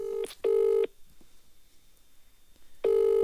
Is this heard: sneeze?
no